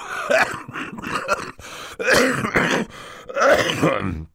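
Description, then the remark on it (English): Actor Tim Curry performs a wet, phlegmy coughing fit for the character Mr. Poe: three rough bursts of hacking and throat-clearing, fairly loud, with short breaths between them. “Mr. Poe opened his mouth to say something, but erupted into a brief fit of coughing.”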